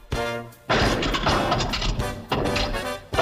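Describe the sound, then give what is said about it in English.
A car engine starts with a low hum, then bursts into a loud, rough roar that dips briefly before revving up again, with no talking. “Just listen to that engine purr.”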